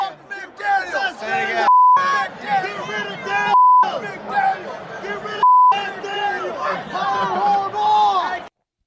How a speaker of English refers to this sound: That's actual audio of actual Raider fans actually screaming, F McDaniels, fire McDaniels, right into Bull Cut's grill.